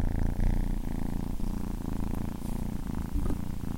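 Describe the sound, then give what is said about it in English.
A cat named Ash purrs steadily, a continuous low rumbling vibration with a soft rhythmic pulse that holds at an even level throughout, with no talking over it. “Shout out to my cat Ash.”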